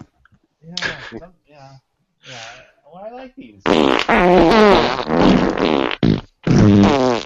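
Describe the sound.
A few short sputtering fart sounds give way to a long, loud run of rippling, blaring farts, broken by a couple of brief pauses.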